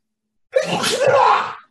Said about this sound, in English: What the fuck was that? It's a sneeze.